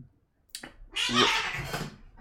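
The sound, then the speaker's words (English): Cats scuffling and fighting, a female cat named Luna beating up a male cat: a quick thump, then about a second of loud, hissing, rustling tussle with a brief strained yowl mixed in. No one speaks. “cats, stop that. She's just beating him up.”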